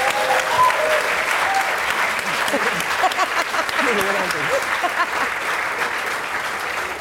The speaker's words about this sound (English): Okay, please give me a huge round of applause.